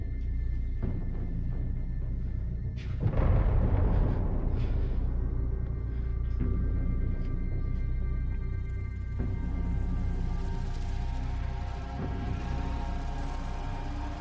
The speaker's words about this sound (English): Do you guys hear that? It's just the fireworks.